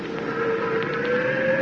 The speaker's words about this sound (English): All right, I'll start the compressors.